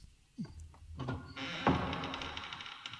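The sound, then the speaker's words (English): A door creaks open: a soft thunk of the latch, then a drawn-out, scraping creak that carries on steadily for a couple of seconds, moderately loud, with no talking. “Creaking as it goes.”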